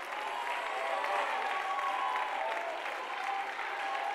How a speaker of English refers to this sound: I'm going to give you a chance to shout a little bit. Somebody ought to take a lap. Somebody ought to clap your hands, run the aisle, shout a little bit, and say, I'm believing.